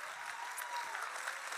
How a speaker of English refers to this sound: It's good to be in God's house. Come on, really clap like you're grateful to be here today.